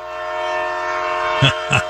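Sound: train running with horn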